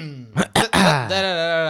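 A man clears his throat up close with a couple of short rough, gravelly bursts, ending in a drawn-out voiced hum as he settles his voice.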